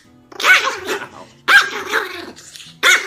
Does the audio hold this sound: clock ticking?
no